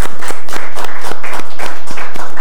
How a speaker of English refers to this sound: So thank you so much for your efforts and continuing doing what you're doing. So let's give you a round of applause.